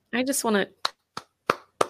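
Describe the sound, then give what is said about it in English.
A brief voiced exclamation, then four sharp, evenly spaced hand claps from a single person, slow and deliberate, with silence between each clap. “I just want to give you a round of applause.”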